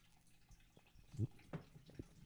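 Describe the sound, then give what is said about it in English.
A person takes a drink of water: a few soft, wet gulps and swallows spaced about half a second apart, with faint liquid sloshing and no talking. “One more drink of water.”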